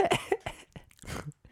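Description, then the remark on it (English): A person coughs several times in quick succession, harsh breathy bursts, with a brief throat-clearing rasp near the end and no speech. “Yeah, he just walks in coughing on people.”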